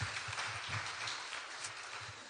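A crowd claps steadily for a couple of seconds, a dense, even patter of many hands with no voices rising above it, along with some faint low thumps underneath.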